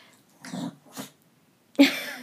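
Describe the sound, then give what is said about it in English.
A dog in the room makes three short, breathy vocal bursts, two softer ones close together and then a sharper, louder one after a brief pause, with no talking. “We also have our dogs in here.”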